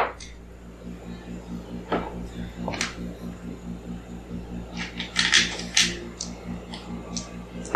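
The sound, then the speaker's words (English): Small hard clicks and clatters of a ten-sided die rolled on a tabletop during a tabletop role-playing game: a few scattered taps followed by a quick rattling burst as the die tumbles to a stop, over a low steady room hum. “Let's use this D10.”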